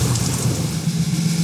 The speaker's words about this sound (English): The ship plunges through the massive swells as the storm rages.